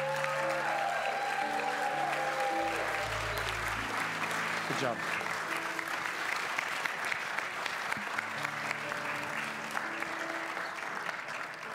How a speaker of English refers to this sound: If you would give them a round of applause.